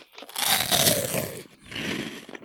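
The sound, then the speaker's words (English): Crackly crunching of a roast beef flavored crisp snack being bitten and chewed, one long noisy burst followed after a brief pause by a second, shorter crunch, with no talking. “So let's try one of these out. I think they're gonna have good crunch.”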